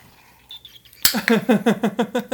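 A sharp, hissing crack of a beer can opening, followed at once by a rapid, rhythmic run of voiced laughing bursts, louder than the faint murmur before it.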